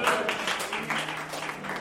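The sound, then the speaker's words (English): A crowd applauds steadily, many hands clapping together in a dense, continuous patter for a couple of seconds. “Don't be afraid to clap for it.”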